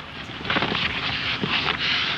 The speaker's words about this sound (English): Sounds like some very intense shuffling to me. Back and forth. Then Harpo relents, picks up the boulder, carefully polishes it apologetically, and then drops it again. But this shuffling has a purpose.